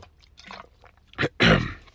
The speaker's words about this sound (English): Excuse me. I'll take a little sip of water here.